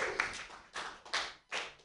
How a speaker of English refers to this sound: Let's just get a round of applause going. Woo! All right.